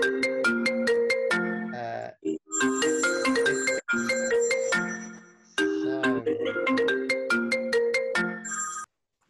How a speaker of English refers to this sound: Oh, and the phone's just rung.